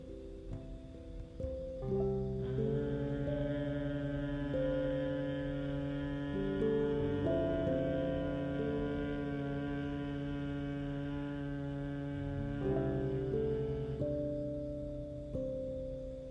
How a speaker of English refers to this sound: As if you're trying to exhale, using the sound of M. Another deep inhale, follow your own pace and your own breathing capacity.